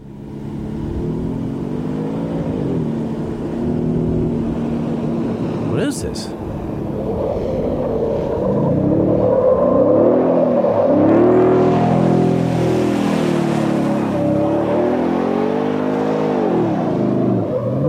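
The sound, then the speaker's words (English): A side-by-side utility vehicle's engine drones and revs steadily, its pitch rising and falling in waves, with a brief sharp click partway through and a person speaking briefly over it. “That sounds like a side-by-side.”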